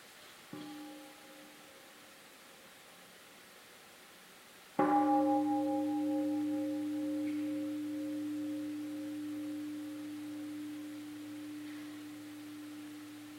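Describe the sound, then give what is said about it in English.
A meditation bell is struck once firmly after a soft preliminary tap, its clear resonant tone sustaining and slowly fading over many seconds in an otherwise quiet space. “Let us listen to one sound of the bell.”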